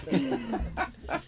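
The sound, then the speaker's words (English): A puppy makes a thin whine followed by several short, soft yips and snuffles, fairly loud, with no one speaking. “Oh, it's a puppy.”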